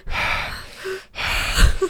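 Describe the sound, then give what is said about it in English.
A voice imitates the heavy, nervous breathing of someone hiding in a tight spot during hide and seek: two sharp, shaky breaths, a long inhale then another ragged one, with no words spoken. “And then you're always breathing like...”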